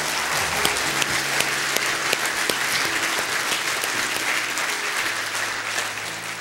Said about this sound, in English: I want to give the praise team a big round of applause today.